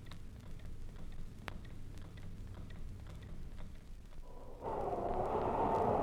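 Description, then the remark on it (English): A pendulum clock ticks slowly and faintly against a low rumbling background, and a louder rushing noise swells in during the final second or so. “And this is the rhythm of a pendulum.”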